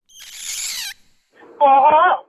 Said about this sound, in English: You've reached the Every Little Thing helpline. Please talk after the squawk.